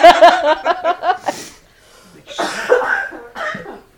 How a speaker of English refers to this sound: Sorry, residual COVID cough.